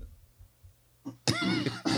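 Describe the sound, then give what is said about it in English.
After a near-silent moment, a loud throat clearing erupts: a short rough onset followed by a gravelly, voiced rasp that holds for most of a second, then a brief final push. “let me clear my throat on this one.”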